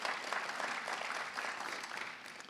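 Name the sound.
audience applause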